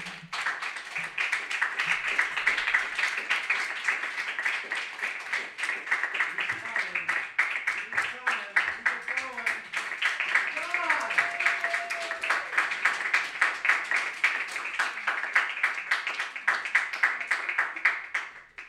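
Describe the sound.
An audience applauds steadily for nearly twenty seconds as the last reader is introduced, a dense, even wash of many hands clapping, with a few scattered voices and cheers rising briefly through the middle.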